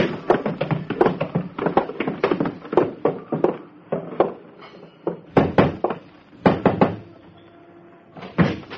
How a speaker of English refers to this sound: Hey, you're going down cellar steps, so hold on to the rail. I've got the rail.